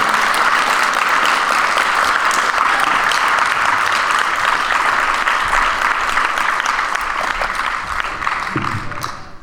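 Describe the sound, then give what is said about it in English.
Sustained audience applause for candidates fills the space, a dense, steady wash of many hands clapping at once, staying loud throughout before easing slightly near the end. “Let's give our candidates another round of applause.”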